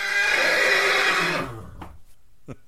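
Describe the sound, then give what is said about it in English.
A horse neighing sound effect: a loud whinny rings out for over a second with bright harmonic quavering, trailing off into a couple of short snorting breaths. “Come here, horsey.”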